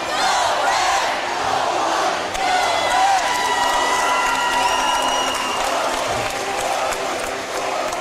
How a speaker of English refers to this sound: We're getting the student-led red and white cheer going, as you can hear.